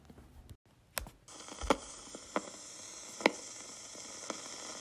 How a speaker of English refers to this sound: she's in her office and the whole time she's typing away at a typewriter.